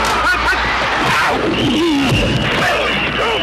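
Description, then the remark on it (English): A thrown Nerf Turbo Screamer toy football lets out a steady, high whistling shriek that holds for a couple of seconds over loud, constant crowd noise and excited shouting. “The new Nerf Turbo Screamer Football, specially designed for the screaming sound of excitement.”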